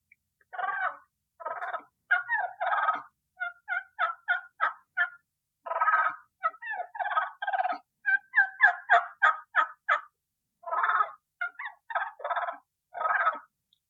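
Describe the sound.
A turkey call imitating a hen produces soft purrs and short yelps in irregular bursts, clear, repeated over about fourteen seconds with brief pauses between phrases and no talking; a call used in close quarters with turkeys.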